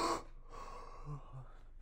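A person yawns: a sharp breathy intake at the start, then a drawn-out, low voiced exhale that wavers and trails off over about a second and a half, heard alone.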